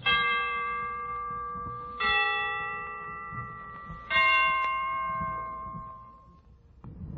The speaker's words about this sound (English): The Christmas bells can ring anytime they're ready. Well, I imagine they're ready now. Let's listen.